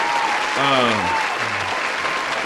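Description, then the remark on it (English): A steady wash of clapping from a crowd fills the whole stretch, with a voice briefly calling out over it twice. “Give a round of applause, man.”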